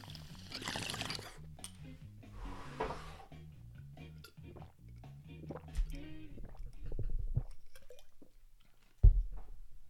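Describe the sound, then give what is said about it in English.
Someone rips a coffee bong, with breathy bursts of inhaling over a low, steady gurgle of bubbling water, then slams an iced coffee with wet gulping and a sharp thump at the end. “I'm going to rip this bong and slam this iced coffee, and then I'll give it a hot coffee.”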